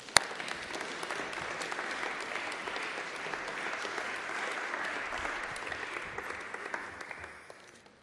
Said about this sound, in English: Thank you very much, my love. That was really good. Round of applause, I think. Yeah.